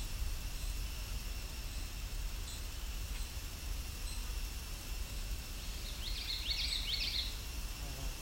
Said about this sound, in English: Also in the background there's a blue jay calling too.